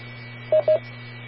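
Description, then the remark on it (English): Two quick DTMF keypad tones from the star and pound keys on a radio beep one right after the other over a steady electrical hum, each a short, bright dual-pitched burst. “did you figure out the star and the pound keys on your radio?”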